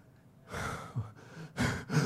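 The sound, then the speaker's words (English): A voice imitates a 12-year-old boy's heavy, nervous breathing: four quick, loud, breathy gasps in and out, unaccompanied, the last two sharper and more urgent. “He started breathing heavy.”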